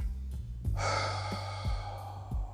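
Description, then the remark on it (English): A slow, deep breath drawn in and let out, a long airy rush of breath over a low steady hum, with no talking. “Take a deep breath. Control your breathing.”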